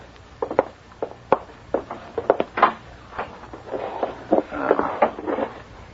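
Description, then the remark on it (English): A clothes closet door being opened, with a run of sharp wooden clicks, knocks and rattles spread irregularly over several seconds, and no voices. “Come on, Peters. Let's take the clothes closet.”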